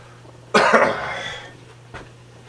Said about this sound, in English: It's hard not to clear my throat so much today because of the allergies and the sinus is really bad here right now.